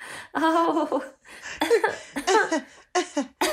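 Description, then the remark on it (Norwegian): A person coughs to clear something from their throat: several loud coughing bursts in quick succession, rough and throaty, with short pauses between them and no speech. “Og nå må jeg hoste litt, så det jo litt av et skue.”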